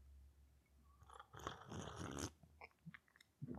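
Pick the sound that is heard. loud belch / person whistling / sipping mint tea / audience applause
sipping mint tea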